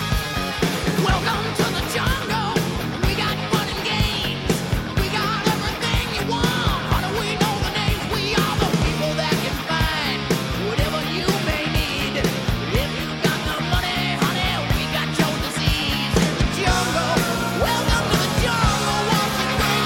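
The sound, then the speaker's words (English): A rock singer screams and wails over a loud, dense wall of distorted guitars and pounding drums, the music driving steadily and at full volume throughout; a newly remastered track from a 1987 album. “Scream still going.”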